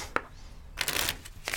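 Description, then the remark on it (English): A quick shuffle of a luck deck of cards: a sharp tap, then a dense riffling burst of papery flutter lasting about half a second, fairly quiet, ending with a soft snap. “I'll just bust this luck deck out. Let's see here. There it is. Von Tube. Just give this a quick shuffle.”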